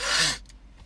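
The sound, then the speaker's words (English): A person imitates snorting a line of powder with one sharp, forceful sniff, loud for under half a second, then a faint breathy trail into near silence. “So they was like, look, they tell you get higher if you sniff it, right?”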